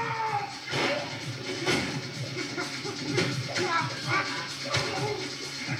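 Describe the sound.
Film fight-scene sounds: a series of heavy punches, including a low blow, an uppercut and knees, and stomping thuds land at irregular intervals, with scuffling movement and muffled voices in between, fairly loud.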